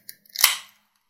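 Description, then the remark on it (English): A can of Florida Man beer, 8.5% alcohol, cracks open: a small metallic click, a couple of faint ticks, then a sharp pop that spills into a bright, fizzy hiss fading out within a quarter second. “But with that said, let's crack into this bad boy.”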